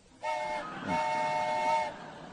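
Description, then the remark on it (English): A train whistle blows twice, a short blast followed by a longer sustained one, its steady harmonic tones loud, with no talking. “It gives our sound effects guy an excuse to be what it feels like to be a whistleblower.”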